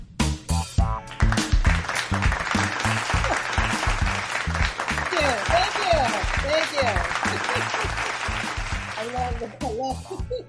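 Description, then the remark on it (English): A crowd claps loudly and steadily for about ten seconds, with cheering voices rising through the middle and a thumping beat underneath before it fades out. “Kenny, for the audience clapping.”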